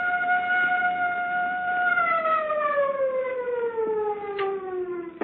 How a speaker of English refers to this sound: First the siren must stop. It offends my ears. Governor, give the order. This is the governor. Turn off the siren.